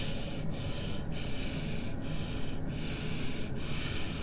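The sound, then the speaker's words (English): A man who has just climbed into a car breathes heavily and deliberately, trying to regulate his breathing, each long rasping breath flowing into the next with brief pauses roughly every second and a half. No one speaks. “When … climbs into the car, it's clear he's trying to regulate his breathing.”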